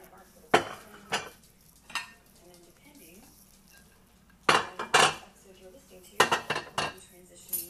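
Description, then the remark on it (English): Someone emptying a dishwasher: sharp clinks and clatters of plates and cutlery come in irregular bursts, with a few heavier knocks clustered together and quieter stretches of faint rummaging between them. “So I'm going to empty my dishwasher.”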